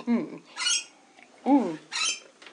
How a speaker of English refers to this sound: Hey, birdies. Okay, I need to take a moment to acknowledge the birds, because they are living beings with needs and a need for love and attention. Hello, birds.